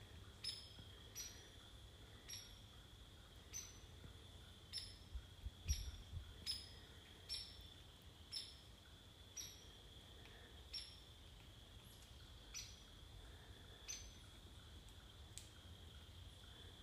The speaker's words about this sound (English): I thought woodpeckers didn't chirp because I only heard them peck. But they chirp or make a sound, a pretty chirping sound too.